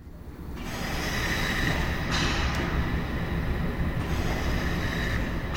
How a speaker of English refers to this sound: I decide it must be the wind. So I look out the window and I can't see any sign of wind. But I still hear this odd, windy, rhythmic whooshing sound.